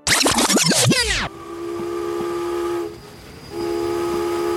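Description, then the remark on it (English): A steam train's whistle sounds in two long, steady blasts with a brief pause between, following a second of loud hissing and clanking as the locomotive pulls into Cedar Rapids, Iowa, on a late autumn evening. No voices. “A train has just arrived in Cedar Rapids, Iowa, and on board is the small but growing town's bishop from the Church of the United Brethren in Christ, Bishop Milton Wright.”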